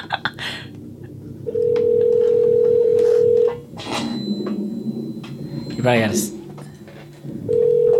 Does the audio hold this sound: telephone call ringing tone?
yes